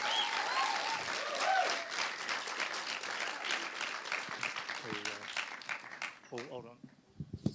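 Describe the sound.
An audience claps and cheers loudly for several seconds as a person comes up to share, a dense wash of applause with a few whoops, before it thins out and a voice begins speaking at the end.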